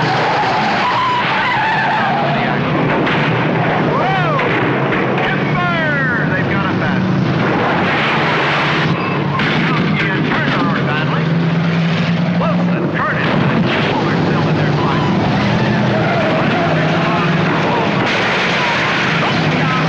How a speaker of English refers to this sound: Now, hey, look out! Look out! Look out! There's action here tonight in a big crowd at Ascot Park watching figure eight racing.